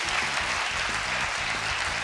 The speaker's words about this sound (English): Clap if you understand what I'm saying.